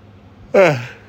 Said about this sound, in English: Can't stop yawning.